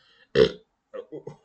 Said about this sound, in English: The ghostly warrior didn't burp, I did.